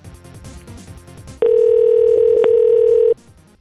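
A steady, loud telephone dial tone hums for under two seconds, broken by a few quick clicks of dialing, with a low murmur of background noise before and after.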